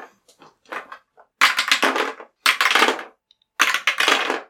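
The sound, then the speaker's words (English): Dice clatter and roll across a table in three loud rattling bursts, each lasting under a second, preceded by a few light clicks and taps. “All right, let's raise some dice for this one, then”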